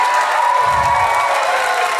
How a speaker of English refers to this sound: You can keep clapping. Weren't they amazing? Come on, let's give them one more hand.